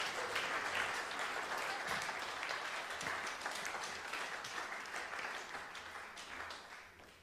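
A crowd applauds steadily for about seven seconds, a dense, bright wash of many hands clapping at once that holds level and then tapers slightly toward the end, with no talking over it.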